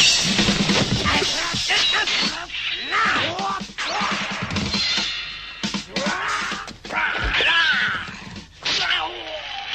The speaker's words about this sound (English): So here's a little bit of Monkey and Pigsy, and you'll hear the fighting noises, and it is very cartoony.